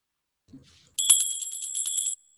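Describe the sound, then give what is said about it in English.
A bright, high bell is test-rung in a rapid, rattling trill for just over a second, loud, then cuts off abruptly; a faint brief rustle comes just before it. The bell signals five minutes left before each session closes. “Niam, can you do test bell ringing?”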